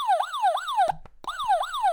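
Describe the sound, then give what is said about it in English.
A siren alarm sound effect wails in quick, repeating falling sweeps, loud and piercing, cutting out briefly in the middle with a few clicks before resuming. No one speaks. “Get your alarm ready.”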